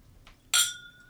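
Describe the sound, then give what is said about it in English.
A single bright clink of glasses touching in a toast, fairly loud, with a clear ringing tone that fades over the following half second. “Cheers to you.”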